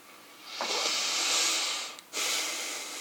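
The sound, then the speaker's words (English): A voice imitates an overfilled pot of water for spaghetti boiling over with a long, steamy hiss, fairly loud, cut by a brief catch near the end before the hissing resumes. “Think about a pot of water when you're boiling your spaghetti and you put too much water in there and it's just...”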